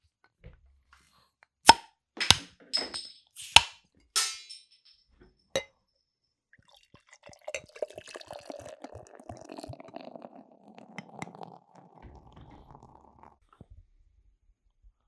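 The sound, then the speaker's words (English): A few sharp clinks and clicks of glass and a bottle of Firestone Oktoberfest-style beer being handled, then a steady, bubbling gurgle of the beer pouring into a glass for several seconds before trailing off. No one speaks. “This is all poured out.”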